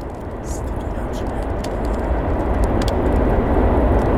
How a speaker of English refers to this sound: And forgive us for the traffic in the background there. It's just part of the charm of living out here and not quite Apple Country. We are a stone's throw from the railroad tracks.